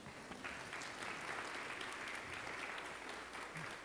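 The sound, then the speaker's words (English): An audience claps together in a steady, dense burst of applause, many hands patting at once, sustained at an even level for several seconds with no voices standing out. “Y'all can clap if you want to.”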